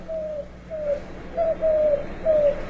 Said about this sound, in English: It would be the Eurasian collared dove. And we talked about its spread through North America after first showing up in Florida in the early 80s.